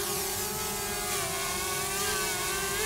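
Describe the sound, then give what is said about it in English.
A drone (unmanned aerial vehicle, UAV) buzzes steadily in flight, a high, whining multi-toned hum that holds constant loudness, its pitch wavering slightly up and down for a few seconds with no voices. “Drones. You like them or you leave them, but they're here to stay.”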